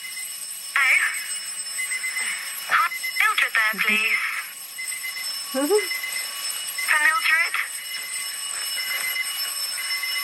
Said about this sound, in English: That's an alarm.